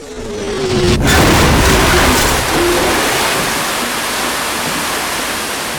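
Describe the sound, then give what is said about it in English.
A sudden heavy impact gives way to a loud, sustained rush of churning water as a small Cessna plane crashes into the water, with no voices present. “And they hit the water.”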